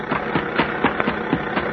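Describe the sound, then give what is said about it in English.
A car engine idles steadily, a dense rumble with a regular chugging pulse about four times a second, running alone without any voices. “Hey there! Stop that car, huh?”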